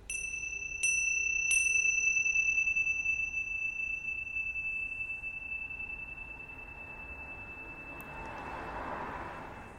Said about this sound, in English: And what I'll do is I'll teach this as a meditation. So we'll begin and end with the bell.